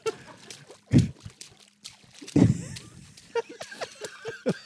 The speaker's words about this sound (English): Is that the sea? That's a little ass boat, man.